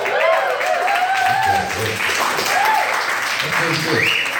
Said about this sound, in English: It gets better every time. I like that. And I automatically get an applause after that. Sometimes you don't get applause for shit. I'm automatically. I love that.